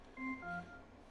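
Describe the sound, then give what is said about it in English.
An Alexa smart speaker's chime on connecting to a laptop: two short, clean electronic tones in quick succession, the second slightly lower than the first, sounding alone and fairly soft with no talking. “Now connected to laptop. Thanks, Alexa. We didn't really need your chiming in on this.”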